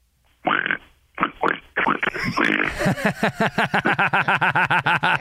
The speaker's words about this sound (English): The pig is back, Eddie. The pig is returned.